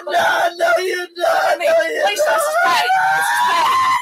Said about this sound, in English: After a bit more screaming,